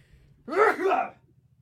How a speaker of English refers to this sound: Was that really loud? No, but it was startling. Okay, that was my dad's sneeze.